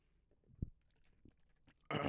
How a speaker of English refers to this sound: Hold on, let me sip the drink because I'm goddamn parched.